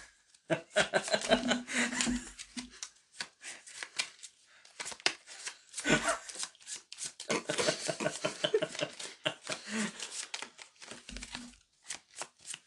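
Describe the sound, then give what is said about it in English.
A deck of playing cards being shuffled during a card game, with repeated bursts of rapid, crisp riffling clicks and brief pauses between passes. “Shuffle.”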